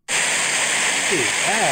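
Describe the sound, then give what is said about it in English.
A steady, even hiss of pink noise starts abruptly and holds at constant loudness like a rushing waterfall, with a faint voice murmuring briefly beneath it near the end. “All right, here's purple, or pink, I'm sorry.”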